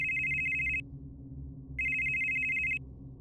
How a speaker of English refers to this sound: His phone rang.